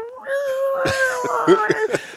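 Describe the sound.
A man vocally imitates an elk bugle: a sustained, high, whistling note that wavers slightly in pitch, then breaks into several short, rough grunting bursts toward the end.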